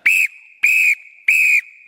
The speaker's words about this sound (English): Here, three blasts of the whistle. In fact, I have my lifeguarding whistle here. Are you interested? This is just to wake up those who are sleeping. Here's how it sounds.